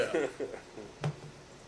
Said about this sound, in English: I haven't even gotten a good burp out of my head. I was like, you got a bunch of little burps in there. I haven't even gotten this is the first little burp I've had.